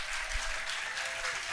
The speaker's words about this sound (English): So one more round of applause for them, please.